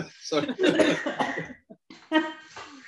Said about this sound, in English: When I first saw her, like, I made myself cough.